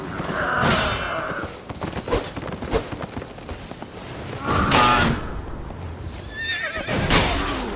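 A horse in a video game whinnies loudly twice, with a shrill, wavering neigh near the start and another around the middle, over busy hoofbeats and clattering combat noise, with no talking.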